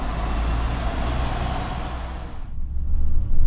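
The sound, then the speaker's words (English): Steady engine rumble inside a double-decker bus, with a broad airy hiss that drops away partway through, leaving a deeper, louder low drone as the engine pulls. No one speaks. “So here I am on the bus now, feeling slightly self-conscious about talking to myself.”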